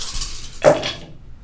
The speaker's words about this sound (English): Here, you need to do this in the dice tray, because that's a fuck ton of dice. Let's get all those other dice out.